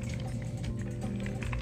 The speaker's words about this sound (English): Excuse me. I'm sorry. I need a sip of the cocktail. Excuse me a minute, guys.